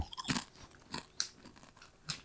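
Crisp crunching as a Chirps Sriracha cricket chip is bitten and chewed: four or five sharp, bright crackly bursts at uneven intervals, moderately loud, with no talking.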